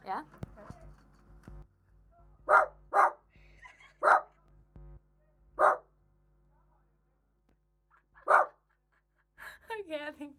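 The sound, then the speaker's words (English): A person barks like a dog, barking back in reply, about 1.5 meters from the microphone: five loud separate woofs spaced irregularly with pauses, with faint background murmuring at the start and a brief higher-pitched voice at the end. “They're trying to make dog voices. Do you want me to bark back?”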